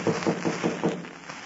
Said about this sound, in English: Before he could tell Burma that Hook was a clever, desperate criminal, there was a knock on the back door of the cabin.